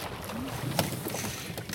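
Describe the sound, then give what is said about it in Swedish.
Water laps and splashes softly against the bow of a sailboat with no motor running, with a steady wash of wind in the background and a few brighter slaps of water near the end. “Inga motorer, bara vinden och vågornas kluckande ut med bogen här.”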